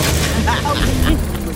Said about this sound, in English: Well, Dad's saying it's a dirty magazine. I guess it's got to go into the wood chipper.